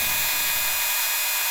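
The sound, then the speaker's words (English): A blender mixing fresh kufuku runs steadily with a loud, high-pitched whirring motor hum that holds constant throughout, with no talking over it. “Let me turn off the blender!”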